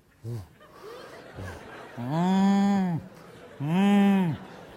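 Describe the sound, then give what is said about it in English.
Two long, drawn-out moos from cattle, one after another with a short pause between, each loud and rising then falling in pitch, preceded by a few faint short sounds. “Like cattle that go down into the valley.”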